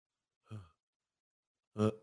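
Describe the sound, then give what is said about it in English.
Two heavy, open-mouthed breaths imitated by a man's voice, mimicking a slack-jawed mouth breather, one around half a second and a louder, fuller one near the end, separated by silence. “You ever see the guy, he always breathing out his mouth like this?”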